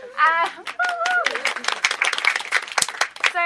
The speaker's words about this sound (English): This is the Badass Women's Hour live at the W Hotel. Thank you very much for hosting us, guys. Everyone can applaud them.